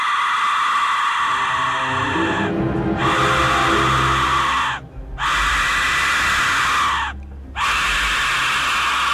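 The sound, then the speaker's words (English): A shrill, piercing death whistle, signaling the Tenement family to come to court for their trial, screams in three long, loud blasts separated by brief gaps, its harsh, rasping tone sustained over a rumbling low undertone. “It signals the Tenement family to come to court to their assigned trial. Death whistle.”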